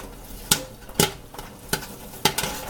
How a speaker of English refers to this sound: I'm not sure if it will make the recording, but you can hear the popcorn hitting the tray.